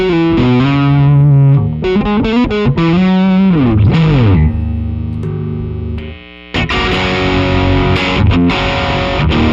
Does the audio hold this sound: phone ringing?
no